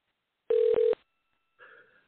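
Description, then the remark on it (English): A telephone rings once with two quick, loud electronic pulses back to back, then a softer, brief tonal sound follows after a short pause. No one talks. “I should hear the phone ringing in here in a second if I do this correctly.”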